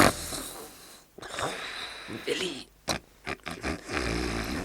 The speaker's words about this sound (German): Tarzan ertrug es nicht länger, Klößchen schnarchen zu hören. Er weckte ihn.